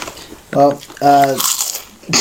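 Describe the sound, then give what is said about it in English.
Loud crunching from someone munching salt and vinegar Lay's chips from a bag, with a couple of sharp bites mixed among short bursts of a person talking. “how loud … is over here just munching. Bro is munching on a bag of salt and vinegar.”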